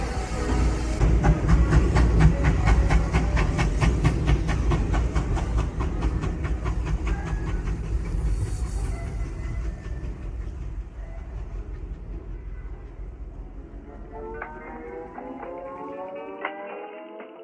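A train rumbles along the rails with a steady clickety-clack of wheels over track joints, loud, and brakes squeal at the end as it slows.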